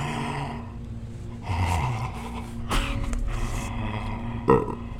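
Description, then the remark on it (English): A voice imitates a clown's heavy, raspy breathing up close behind the listener, a few drawn-out breaths with grunting, snorting textures and a sharper burst near the end. “He is excruciatingly close, and you hear heavy breathing behind on you and the smell of rot coming from his mouth, and you hear...”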